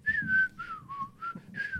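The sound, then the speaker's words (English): A person whistles a short, catchy TV theme tune, a handful of sustained notes that slide gently down and back up in a steady rhythm, with no talking. “I thought you were going to start whistling the theme.”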